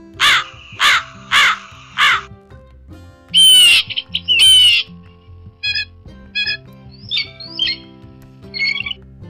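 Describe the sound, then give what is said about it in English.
Crows caw in a quick series of four harsh calls, followed by two louder, raspy squawks and then several shorter, fainter calls, with no talking. “When you step outside and listen to the birds in your backyard, the loudest ones are most likely corvids.”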